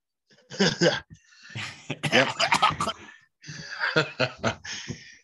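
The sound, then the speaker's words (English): Loud coughing from a person who is stuffed up and under the weather, in three rapid clusters of sharp bursts separated by brief pauses, with some breathy, laugh-like sounds mixed in. “We might communicate in coughs.”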